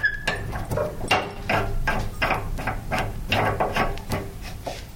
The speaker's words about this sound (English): I'm opening the tap, but there's no water coming out. None water, not even a little bit. No, no water. Because the water's been cut off, the meters has been removed.